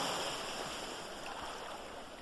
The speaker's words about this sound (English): I love the sound of the waves as they crash against the seashore. As a matter of fact, I picked up the habit years ago, decades now, of sleeping to the sound of the ocean.